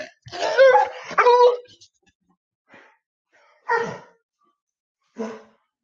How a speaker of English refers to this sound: Had to get the dog outside. He was acting a fool, like a jerk.